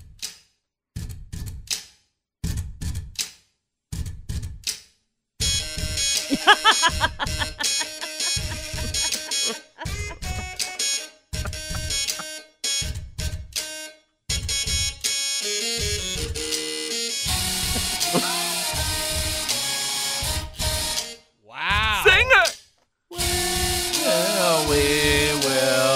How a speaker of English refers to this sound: Again, electric toothbrush, a hair remover, a credit card machine, three typewriters, and a lady's shave razor. Why do they have three typewriters is what I want. Because that was the click, click, clack.